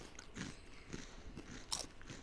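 Someone bites into a crunchy, very spicy tortilla chip during a spicy chip challenge, a sharp crisp snap followed by a few softer chewing crunches in an irregular rhythm, with no talking.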